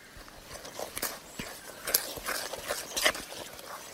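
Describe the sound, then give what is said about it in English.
A cup of water poured slowly into a big bowl holding four cups of dirt and two cups of sand, making a series of irregular wet spatters and soft splashes over a few seconds, with no voices. “I'm going to add the water slowly.”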